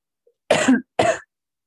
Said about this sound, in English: Sorry, cough.